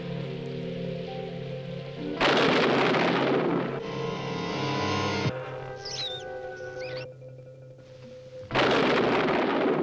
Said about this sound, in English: The trailer is mostly just text and thunder clap sounds, so enjoy that for a few seconds, and we'll be back very shortly.